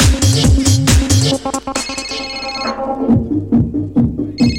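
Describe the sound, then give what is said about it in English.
A phone ringtone plays loudly, a bright electronic melody of repeating tonal bursts that keeps cycling with no one speaking over it. “You said, please answer the phone.”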